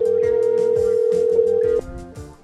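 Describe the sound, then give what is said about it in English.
A phone call ringing on the line: one steady, loud electronic ring tone holds for almost two seconds, then cuts off abruptly, with music playing quietly underneath. “We're ringing.”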